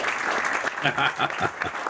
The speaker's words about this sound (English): Get a longer applause for that one.